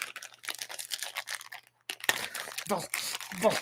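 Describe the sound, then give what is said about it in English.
A plastic bag crinkles and rustles in irregular bursts as it's pulled open, pausing briefly before louder crackling resumes, with a voice faintly audible underneath toward the end. “There's like another bag inside bag.”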